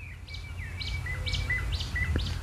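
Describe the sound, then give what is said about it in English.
A woodpecker calls about five times in a steady series of sharp, high chirps over a low background rumble with no talking. “But we have woodpeckers here.”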